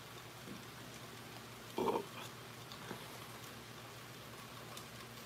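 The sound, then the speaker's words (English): A steady, soft hiss of rain falls throughout, with a brief louder burst of sound partway through and no voices. “I served your ass so hard, I made it rain out this motherfucker.”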